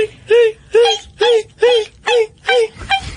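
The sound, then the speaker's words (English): A voice imitates the shrieking violin stabs from the shower scene in Hitchcock's Psycho: seven loud, high-pitched swooping cries in a quick, steady rhythm, with the last one fainter and shorter. “did you know that in the original cut of Psycho, that Hitchcock did not want those high-pitched violin screams to accompany the shower scene?”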